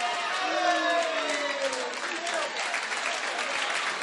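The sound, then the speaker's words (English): An audience claps steadily for about four seconds, a dense, even wash of applause at moderate volume with a faint voice or murmur running underneath. “I don't know why you are clapping again”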